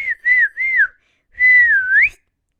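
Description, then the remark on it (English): A whistled calling signal from the video game Breath of the Wild, Link calling his horse: three quick wavering notes, a short pause, then one longer note that dips and sweeps upward at the end. No one speaks. “And it wasn't like a kind of whistle. It was literally just him calling his horse.”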